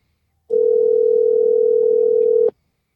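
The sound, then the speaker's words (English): A steady, loud telephone dial tone after a call dropped on the other caller's end hums continuously for about two seconds, then cuts off abruptly, with no voices present. “See, this isn't on our end. This is on his end.”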